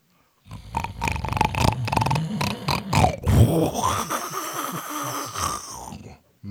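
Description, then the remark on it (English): A man's voice imitates loud snoring: a run of rough, rhythmic snorts and grunts, then a long wheezing, whistling drawn-out breath, with no words spoken. “And I get up on him and he is snoring.”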